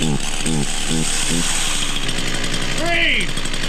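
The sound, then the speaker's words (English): A running chainsaw is balanced on a man's chin as he walks for a Guinness World Record distance, a loud, steady motor drone throughout, while voices call out in short bursts over the engine noise. “set a new Guinness World Record for the farthest distance walking while balancing a running chainsaw on his chin.”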